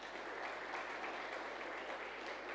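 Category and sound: crowd, audience applauding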